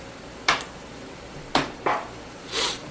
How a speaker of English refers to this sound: We're pouring shots, so don't mind the silence.